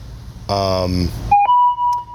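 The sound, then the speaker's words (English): A brief voice sound gives way to a short electronic tone, then a longer steady bing that rings out clearly, a notification chiming on the phone being used to record. “Yeah, you might hear a couple of little fucking bings and shit, because I'm doing it on my phone, so fuck it.”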